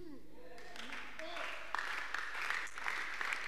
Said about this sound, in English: Those who are clapping, they are there.